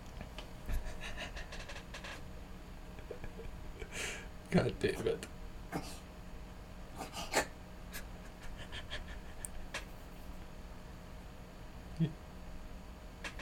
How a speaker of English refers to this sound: I think my cat is trying to throw up on my rug right now.